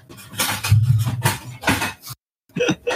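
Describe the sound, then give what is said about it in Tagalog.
A metal cooking pot is banged down hard several times by the speaker's sibling, producing loud clangs and clattering in an uneven rhythm, followed by a short pause and a brief burst of voice. “Kawawa naman yung kaldero.”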